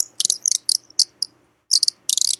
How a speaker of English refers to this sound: You hear that squeaking? Ooh. Yeah. It's an Audubon bird whistle. It's a little thing. We used to have one of these when I was a kid. It's just like a little wooden thing with a metal in it.